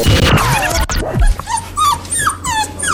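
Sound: dog whimpering and yipping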